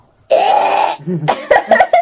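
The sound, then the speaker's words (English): A cat coughing up a hairball: one long, harsh, raspy hack followed by a few short, choking retches and gulps, loud with no talking. “Let me guess, he coughs up a hairball.”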